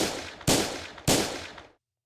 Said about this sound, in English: Now, those not gunshots, but they are a battering ram being held up by 10 plus officers trying to get into your home.